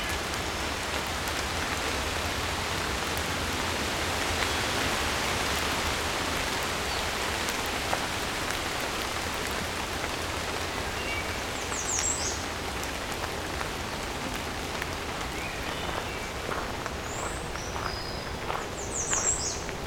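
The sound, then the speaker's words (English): Steady rain patters throughout, thinning slightly over time, while a few faint, high bird chirps begin to break through in the second half. No one speaks. “Often right after the wind, or the rain dying down, wind too, birds will start singing more.”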